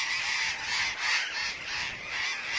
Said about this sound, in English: Burrowing parakeets are big and slender, a foot and a half tall with long tails, golden green wings, and yellow underparts marked with orange. Above ground, they roam in search of seeds and fruit over dry, open country in Chile and Argentina.